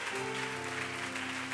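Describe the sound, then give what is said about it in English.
An audience in Mississippi claps their hands in praise of the Lord in a dense, steady wash of applause, with a sustained low musical chord holding underneath throughout. “Come on, we're clapping for the King of Kings and the Lord of Lords this evening.”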